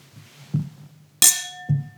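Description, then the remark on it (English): A single bright clink of wine glasses of Sauvignon Blanc from Marlborough, New Zealand, touching in a toast, followed by a clear ringing tone that lingers for about half a second, with soft dull knocks before and after over a low hum. “Man, we got to start recording these with video because that was a pretty epic thing we just did with cheersing and sniffing and then sipping all in unison.”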